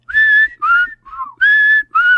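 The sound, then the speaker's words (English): Someone whistles the Andy Griffith Show intro theme, a short melodic tune in five clear phrases with brief gaps between them, fairly loud, with no talking. “I don't want to whistle anymore because if I do, I might get copyright struck.”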